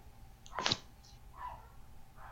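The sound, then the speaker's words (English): A dog gives one sharp bark, followed by a couple of fainter, shorter yips, all muffled over a low background hum. “all I could hear was the dog barking.”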